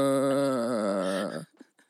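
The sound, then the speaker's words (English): A female giraffe's moan during courtship: one steady, low, droning call with a slight waver, held for about a second and a half before stopping abruptly, followed by a faint rustle. “And then there's a moan by females during courtship.”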